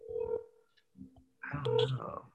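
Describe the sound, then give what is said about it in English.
Telephone call tones as someone phones a friend: a steady electronic beep, a short pause with faint clicks, then another held tone under muffled voices and line noise, like dialing and a ringing line. “Can I phone a friend real quick?”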